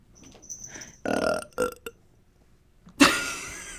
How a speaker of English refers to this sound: I thought you were going to say yes, but instead I burped.